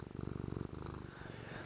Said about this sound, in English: He's purring all crazy.